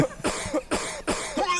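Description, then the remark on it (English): A burst of harsh, close-up coughing right into the microphone, about four loud coughs in quick succession with short wheezy breaths between them and no talking. “I just cough on the fucking thing if you guys are going to complain anyway.”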